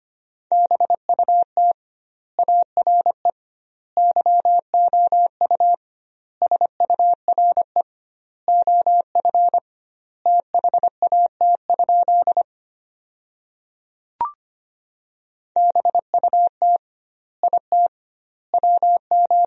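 A steady, high-pitched Morse code tone sent at 25 words per minute beeps out a sentence built from the top 300 words in quick dots and dashes, with doubled word spacing giving wide gaps between words, and a single faint click partway through.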